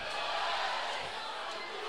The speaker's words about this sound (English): kind of got the crowd into it a little bit, and the crowd's still going here an hour after the ball game.